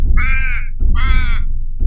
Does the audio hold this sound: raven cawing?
yes